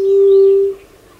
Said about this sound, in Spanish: Ahora una sigilosa paloma ala blanca hace su llamado siniestro desde el suelo del bosque.